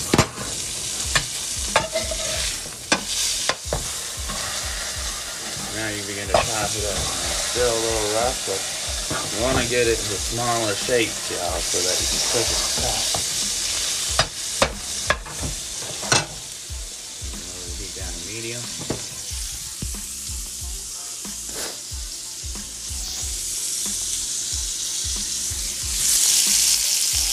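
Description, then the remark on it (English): Chorizo sizzles steadily in a frying pan, a loud, continuous crackling hiss, punctuated by occasional clinks and scrapes of a utensil stirring the meat. “It's getting sizzling. That's the chorizo working.”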